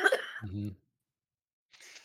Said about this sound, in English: you can cough it out. Yeah. It's that time of year.